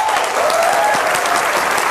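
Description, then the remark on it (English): Steady, dense applause from a game show studio audience before a tiebreaker hosted by Ken Jennings, many hands clapping at once in a loud, even wash of sound with no voices over it. “Okay, they do a tiebreaker, and I'm assuming in this clapping is when the producers are filling Ken Jennings' ears with, hey, bud, here's what you're going to do right now.”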